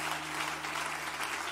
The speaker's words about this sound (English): Give the Lord a good hand clap of praise.